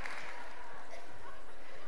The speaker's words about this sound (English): Already getting a round of applause. I haven't even told you about him.